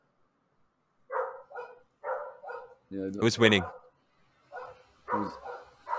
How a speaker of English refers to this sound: Yeah, the two dogs. Are they fighting or who's winning? No, they live in different places, so one can't reach the other. Ah. What are they saying? It's like, fuck you, I'm going to get you.